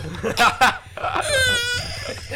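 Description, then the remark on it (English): A voice imitates the howling noise a man makes when vomiting into the toilet after drinking: two harsh, retching bursts followed by a strained, rising howl held for about half a second, with breathy noise around it. “But then it's the noise. You know, like when you vomit, you go, he's like, that's a howl.”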